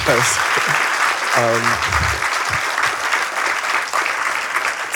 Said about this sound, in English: Yeah, a big round of applause for those people.